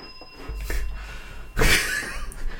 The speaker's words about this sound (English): What was that noise? What was that noise? Did you hear something? I heard heavy breathing.